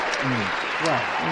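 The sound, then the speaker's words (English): A crowd claps and cheers in a steady, dense wash of applause, with a few voices whooping above it, filling the whole short moment at a lively level. “Cheer for me. Boo for me.”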